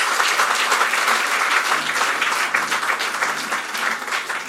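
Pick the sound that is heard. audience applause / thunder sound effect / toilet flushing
audience applause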